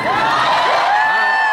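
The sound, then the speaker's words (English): A large live audience in Kansas City cheers and whoops loudly, many high voices overlapping in a dense, continuous roar with rising shouts breaking through, no single speaker standing out. “Welcome to the city. What a reception. What a crowd.”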